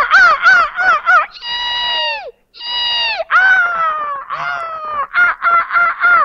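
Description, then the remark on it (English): A person's voice loudly imitates the game-caller tape used when hunting crows: a crowd of harsh, rapid crow caws mixed with long, drawn-out screeching cries, like crows mobbing a hawk, in nearly continuous bursts. “So when we hunt crows, we play a tape through our game caller that's like a crow being attacked by a bunch of or a hawk being attacked by a bunch of crows.”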